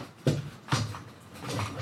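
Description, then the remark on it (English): Two sharp wooden knocks land about half a second apart as two legs fall off a wooden chair being taken apart, followed by softer rustling and handling noise. “Taking apart the now chair. Now two of the legs fall off.”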